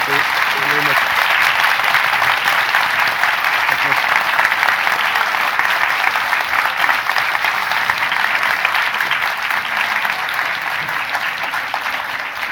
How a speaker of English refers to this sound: Please give Kamila Shamsie and Donal Ryan a huge round of applause.